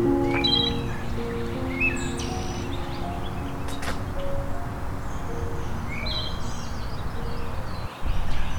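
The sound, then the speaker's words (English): A wood thrush sings in short, clear fluty phrases over a steady rushing background noise, with other birds chirping faintly. “have a wood thrush.”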